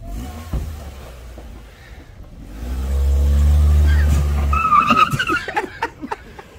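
A car engine roars, then tires screech in a brief skid as the car goes up onto a curb, followed by a few sharp knocks and jolts, with people shouting.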